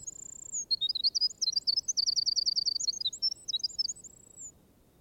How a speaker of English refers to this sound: I think of a tremulous vibrating tongue of silver. You may know it is the song of a wren from its gushing lyrical character. But you must needs look sharp to see the little minstrel, especially while in the act of singing.